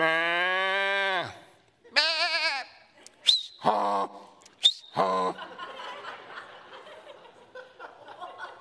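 Sheep bleat loudly, a long wavering cry followed by several shorter bleats, then the calls give way to a low, scattered background of cattle lowing.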